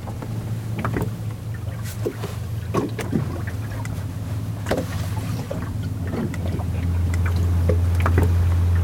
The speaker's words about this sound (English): and the boat's now idling as we all scan the horizon for a blue whale blow, but also listening out for it.